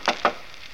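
Two quick, hollow knocks rap on a wooden shop door in brisk succession, followed by a faint steady hiss with nothing else.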